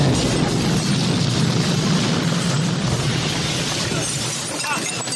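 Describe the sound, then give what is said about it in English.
Loud, continuous cinematic explosions with heavy rumbling and crashing, shattering debris, sustained and dense for several seconds without a break, with no clear talking over it. “So many explosions.”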